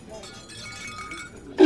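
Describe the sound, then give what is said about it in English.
A low, steady background murmur in a crowded spot on Tatooine runs along until glass is accidentally broken, a sudden loud burst crashing in at the very end, sharp and bright. “It's just broken glass.”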